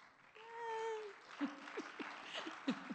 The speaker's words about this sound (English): he was the first one to clap because he's working with me on that.